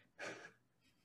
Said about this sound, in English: Bless you. Sorry, I was sneezing. I wasn't sure if you were sneezing or not. I have a distinguishable sneeze, but it's just weird. It was so cute. Someone's like, it sounds like a chipmunk squeaking, and I was so offended.